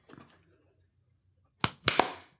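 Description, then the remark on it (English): After a mostly quiet stretch, several people try to clap at the same moment, producing three sharp, loud bursts in quick succession that are not perfectly in sync. No one speaks. “So y'all clap right after her.”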